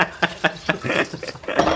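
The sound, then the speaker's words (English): Dishes being washed: three sharp clinks of plates and cutlery in quick succession, then a steadier clatter and splashy rush, moderately loud, with no talking. “This is, first episode of Dishing, no, Washing Dishes and Talk.”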